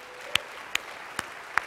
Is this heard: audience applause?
yes